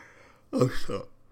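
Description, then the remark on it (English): A single short, voiced yawn, a drawn-out vocal sound with a rising then falling pitch, lasting about half a second against a quiet background. “Sorry for the yawn.”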